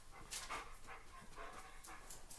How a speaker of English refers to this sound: Okay. Well, my dog. Let's talk about Coberton. Coberton. Kobe. He likes to sneak under the bed and hide.